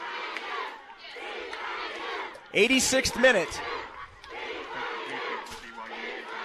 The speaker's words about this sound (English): You hear the dueling fans, half cheering TCU, half cheering BYU. Right now, it's the TCU fans who have the most to enjoy as their team leads 2-1.